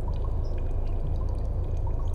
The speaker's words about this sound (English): A sound of dripping water. Plink, plink, plink.